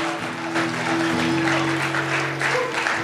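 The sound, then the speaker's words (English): A large crowd at a worship service applauds steadily, clapping for God, with dense clapping throughout while sustained organ or keyboard chords hold underneath. “Put your best hand clap together for God.”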